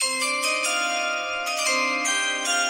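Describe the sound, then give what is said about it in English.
A bright chime sound effect played for a draft rings out alone, several struck metallic notes layering over one another in a sustained, shimmering sequence at steady moderate volume. “Oh, draft chimes. It's the only time I'm doing that.”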